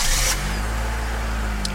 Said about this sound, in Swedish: Motorn. Så lyssnar jag på den igen. Kall start.